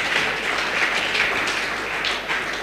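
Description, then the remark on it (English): A church audience claps together for Jesus in a steady, dense wash of applause, many hands striking at once with a bright, crackling texture that stays loud throughout. “Clap for 2 hands for Jesus.”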